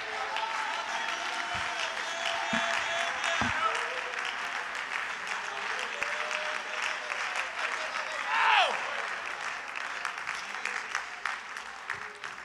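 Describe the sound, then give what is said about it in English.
An audience claps in sustained, dense applause, many hands blending into a steady roar with scattered cheers and a brief rising whoop near the end, a hand clap given to God at a Sunday night church service. “Somebody ought to give him a great hand clap.”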